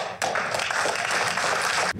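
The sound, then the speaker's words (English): An audience in a town hall bursts into loud, steady applause for students, many hands clapping together in a dense wash of sound that starts abruptly and cuts off after nearly two seconds. “People aren't clapping for students like that in town halls.”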